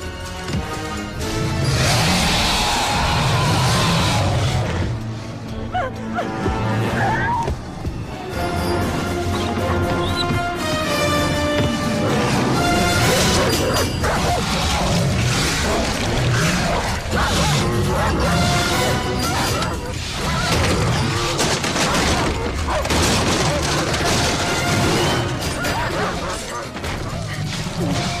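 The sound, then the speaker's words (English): A loud, chaotic fight between two dogs, one named Thor: continuous snarling and growling tangled with repeated crashes and heavy impacts, dense throughout with no pauses. “And time for an all-out dog fight!”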